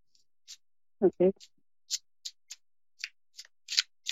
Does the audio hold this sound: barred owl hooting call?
no